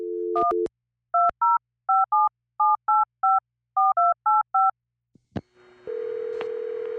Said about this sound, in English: She finally dialed the number.